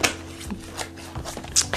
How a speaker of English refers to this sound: So I'm going to shuffle up these cards and I'll see you very shortly.